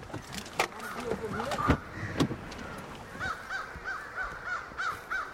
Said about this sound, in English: This is prime time. We're at about 6 o'clock, where we'd certainly expect to see crows trying to roost here for the night.